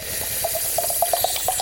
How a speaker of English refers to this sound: Right, I'll pour you a glass and hope you enjoy your salty finish.